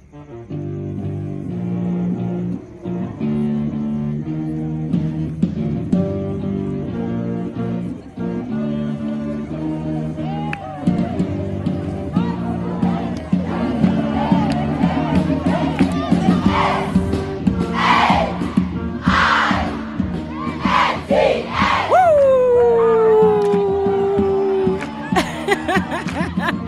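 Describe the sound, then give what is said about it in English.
A large group of high school girls, the Saints ladies, chants a war cry in unison in a challenge against Queen's College, rhythmic and loud, with rising shouts and high-pitched yells breaking out toward the end amid crowd noise. “HIGH SCHOOL WAR CRY CHALLENGE”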